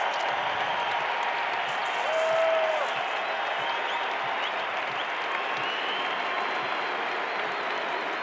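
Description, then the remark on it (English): A big arena crowd at a basketball game between the Jazz and the Rockets rises, applauding and cheering after a 24-second shot clock violation by the Jazz, a loud, continuous roar of clapping that holds steady throughout, with a short whistle-like tone rising briefly above it near the start. “A 24-second shot clock violation here by the Jazz, and the crowd rises.”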